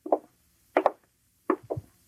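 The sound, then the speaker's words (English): Three sets of quick double knocks on a door, evenly spaced less than a second apart, sharp and moderately loud, with no voices. “Get the door, will you?”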